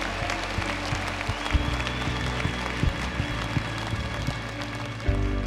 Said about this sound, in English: Hey, one more time this morning, if you're thankful today for our God and how good he's been to you, can we just lift him one more hand clap offering of praise this morning?